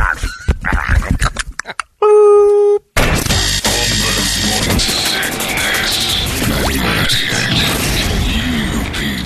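A phone clatters onto a hard floor in a burst of irregular, loud bangs, then a steady electronic tone cuts off abruptly, giving way to dense, continuous rustling and handling noise as the phone is picked up.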